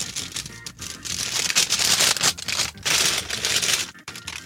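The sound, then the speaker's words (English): Continuous crinkling and rustling as the plastic mailing bag of a package sent from Amsterdam is handled and torn open, with dense crackly bursts and a few brief pauses, no talking. “We got this here, says paper clip on it. No, that's just the bag.”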